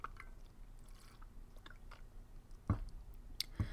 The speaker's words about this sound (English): Sorry, I have to take a sip of water.